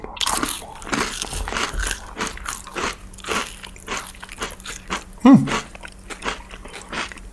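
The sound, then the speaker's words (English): Someone crunches on rosemary and olive oil Artisan Nut Thins, multi-seed crackers made with brown rice and almonds, with a steady run of crisp, crackly bites and chews at an uneven rhythm. One bite lands noticeably louder than the rest. “I'm about to dip in with my rosemary and olive oil. Crunch master.”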